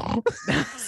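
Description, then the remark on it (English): A voice imitates a pig, giving a couple of nasal grunting oinks in quick succession, with a brief gap between them, loud and alone without any other talk. “Oh, where's my blanket? Because I'm a little piggy.”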